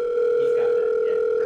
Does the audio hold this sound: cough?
no